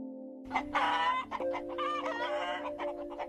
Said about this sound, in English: He saw fat, happy pigs rolling in the mud, and hens clucking and pecking at corn scattered on the ground.